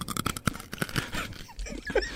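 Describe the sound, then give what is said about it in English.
Crisp, crackly crunches from someone biting into crunchy food seasoned with nutmeg and thyme, a quick irregular series of sharp bursts over about two seconds, moderately loud with no talking. “Let's hear that crunch again. Oh, that's good. That's good crunch.”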